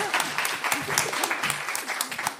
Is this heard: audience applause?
yes